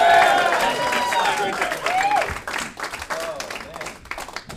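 A crowd applauds with dense, steady clapping for a few seconds, joined by rising and falling whoops and cheers that ring out over the clatter before it gradually thins.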